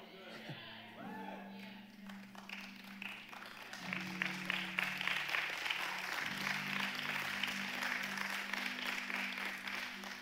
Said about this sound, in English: That was one of my favorite claps. It was like an engine revving up.